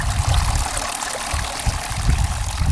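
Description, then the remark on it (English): Water pours and trickles steadily at a child's water table, a continuous splashing stream with small gurgling surges, heard on its own without any voices. “You like playing with the water table?”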